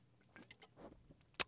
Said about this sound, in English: This is Toby juice for the damsel in you. Mama mia, no. I'm not sure. Well, let me just have a little sip of it. Let me just see here.